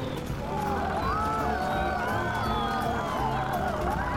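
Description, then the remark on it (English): A crowd watching a stunt plane doing loop-de-loops cheers and shouts, many voices overlapping into a dense, steady roar that stays loud for the whole few seconds, with scattered higher calls rising above the mass. “Wave to the crowd.”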